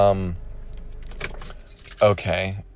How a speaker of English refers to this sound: Those are my keys rattling. ASMR.